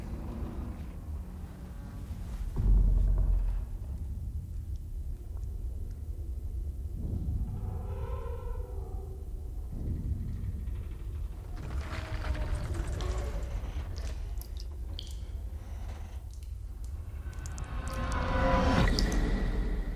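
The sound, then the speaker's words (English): Deep-sea submersible descent ambience 5,000 miles from land, descending 7 miles to the ocean bottom: a steady low underwater rumble with muffled sloshing, a brief wavering tonal groan midway, and rushing whooshes swelling near the end. “Listen carefully. You are now 5,000 miles from land, and you're descending 7 miles to the bottom of the ocean.”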